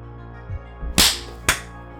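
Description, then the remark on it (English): Two sharp, loud hand claps, made to sync up the audio recording, land about half a second apart, the first slightly fuller than the second, over a low steady hum with a few soft thumps just before. “We gotta clap first.”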